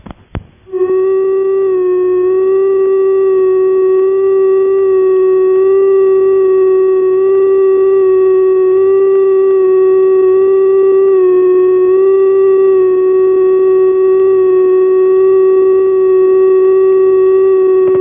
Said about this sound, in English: The tone that follows is not a special tone, but in fact just an ordinary sad ringing machine running unevenly.